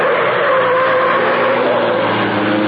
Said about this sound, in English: As the great car roared into life, a section of the wall lifted in front of it. The car turned into the street.